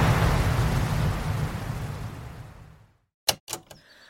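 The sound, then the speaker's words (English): The Old Faithful geyser erupts, its water reaching heights of up to 180 feet, with a broad, steady roar of rushing water and steam that slowly fades away over about three seconds, followed by a brief silence and then a few sharp, clicking knocks. “The water from Old Faithful can reach heights of 180 feet!”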